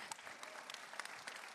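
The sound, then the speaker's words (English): A steady burst of applause, many hands clapping in a dense, crackling wash with sharp bright spikes throughout, moderately loud and without any talking over it. “Clap y'all worthy. Can clap, yeah.”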